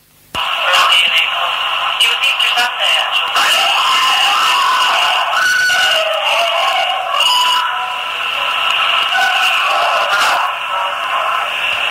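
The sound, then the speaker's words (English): A few people talk indistinctly, then a woman's scream breaks out followed by more shocked shrieks, all heard through a tinny, hissing, radio-like recording. “What you're hearing there is, in fact, are you hearing a few of the guests speaking and then the scream kind of kicks in and then it makes other people scream because of the sheer shock of it towards the end.”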